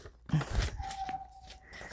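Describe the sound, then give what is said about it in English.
Thin paper crinkles and rustles in a few quick, crisp bursts as it is folded, with a faint steady whistling tone briefly in the background. “And fold. And this paper is much thinner, so it's easy to fold.”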